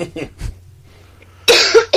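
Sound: coughing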